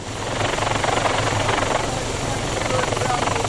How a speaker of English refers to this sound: North of Waihee, a helicopter hired by Heritage Gold and paid for by those investors has spent many days flying just 50 feet or 15 metres above the ground. It uses special aerial photography to try to work out what's underground.